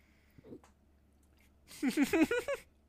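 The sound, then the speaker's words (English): A faint, short throat sound, then a louder, gurgling gulp that lasts about a second, voiced and wobbling in pitch across several quick pulses, like swallowing and hiccuping at once. “That was like I was swallowing and hiccuping at the same time.”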